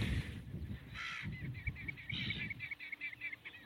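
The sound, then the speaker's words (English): Godwits, a kind of wader, calling in a quick series of short, nasal, repeated notes over a low rumble of wind and background noise. “They've got an unusual call.”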